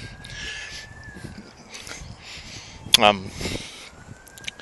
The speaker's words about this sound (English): So again, as usual, traffic noise, me huffing and puffing. I'm a big bloke. I'm using a lot of my oxygen that I'd normally be using to breathe on talking instead. So that's one of the reasons why I'm puffing.